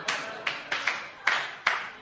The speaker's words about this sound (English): Y'all shouldn't be clapping.